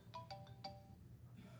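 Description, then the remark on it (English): A phone ringtone chimes four quick melodic notes over a low background hum, the tones ringing out and fading, followed by a faint start of another phrase. “I should have turned my phone off.”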